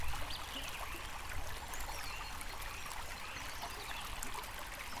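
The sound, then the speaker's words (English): A steady, gentle stream babbles and trickles continuously in sunlight, a soft even wash of flowing water with faint bird chirps scattered above it; no one speaks. “Let's just stop here for a moment and listen to the sound of the stream, the birds, and the gentle breath of the air.”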